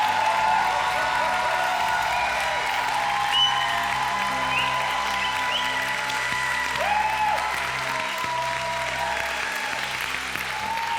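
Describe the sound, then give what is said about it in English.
Sustained applause from a church audience clapping in praise of Jesus, dense and steady hand clapping from a large crowd for the whole stretch, with faint cheers and voices mixed in underneath. “Let's give Jesus a better hand clap of praise.”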